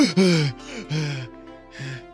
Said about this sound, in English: Did you just cast a spell with a marshmallow? Gesundheit. That was a spell? I thought you died. We found your spellcasting focus. Is that going to happen every time you sneeze now?